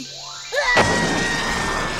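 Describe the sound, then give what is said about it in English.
A large bottle rocket firework takes off into the sky at a chili cook-off: a quick rising whistle, then a sudden loud burst that turns into a steady, rushing hiss that carries on to the end without fading much. “Would you look at that firework taking off into the sky?”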